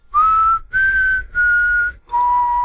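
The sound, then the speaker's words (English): A clear four-note whistled melody, each tone held steady with short gaps between, sounding like a simple bird call. It is fairly loud, with a faint low rumble underneath and no talking. “I don't know if they actually recorded whistles or not and then mixed it in to sound like birds”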